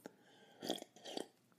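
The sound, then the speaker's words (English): A quiet sip of coffee followed by a gulping swallow, two short wet mouth sounds about half a second apart with near silence around them. “Excuse me while I take a sip of my coffee, my Star Wars Hontox first coffee.”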